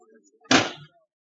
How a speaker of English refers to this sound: let me open this door for you.